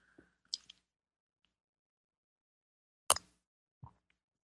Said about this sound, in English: It's time for me to have a sip of my tea here. My yummy rainforest tea.